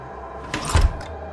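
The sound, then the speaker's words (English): A single door slams shut with a short scrape followed by a deep, solid thud against a quiet background hum, with no voices present. “I heard the door slam as my world continued to spin.”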